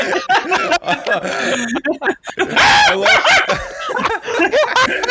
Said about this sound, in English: Oh man! All I love that cool. sound effect. It's yeah. Dude, no, it's so good, man. The monkey shriek.